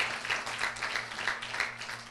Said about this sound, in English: Come on, somebody. Let's give God a round of applause right now. Thank you, Jesus.